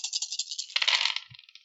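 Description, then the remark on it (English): Dice clatter across a hard tabletop in a quick run of bright, rattling clicks that swell into a brief louder tumble before settling, with no talking. “All right, roll dice.”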